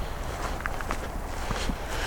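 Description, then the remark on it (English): Footsteps walk steadily over loose ground outdoors as someone walks in to retrieve some recorders, a series of soft crunching steps in an even rhythm with a constant low rumble of cool wind underneath. No one speaks. “So initially I'm walking in here today, so I can retrieve some recorders.”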